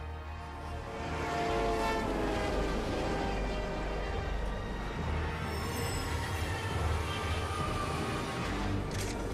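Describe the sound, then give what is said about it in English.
An elevated train rumbles steadily past over the L bridge, a loud continuous roar of wheels on rails with metallic squeals and a brief high screech near the end, no voices. “Lieutenant Gordon will be passing under the L bridge just as the train goes by.”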